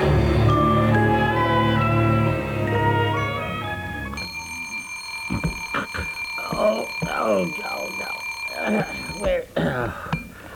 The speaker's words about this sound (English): Oh, golly, I tell you, the man who invented the alarm clock ought to be shot.